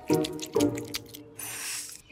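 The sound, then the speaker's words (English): Exaggerated gum chewing: two wet, squishy smacks, then a hissing, sticky stretch and a sharp final snap, fairly loud with no talking. “I'll just be over here chewing this new gum I invented.”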